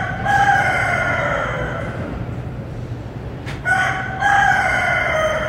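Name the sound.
rooster crowing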